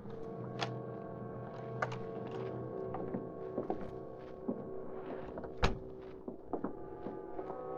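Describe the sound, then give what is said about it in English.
A key works a lock and the rear door of Rudolph's swap shop swings open as Britt Reed opens it with his special key on a foggy night, heard as a scatter of sharp clicks and soft thunks over a steady low hum, moderately quiet. “Nor did he hear the noise at the rear door in back of the store as Britt Reed opened it with his special key.”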